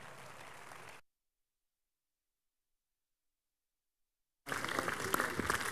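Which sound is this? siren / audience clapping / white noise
audience clapping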